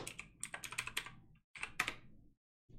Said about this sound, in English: You ever tried to type upside down on a keyboard?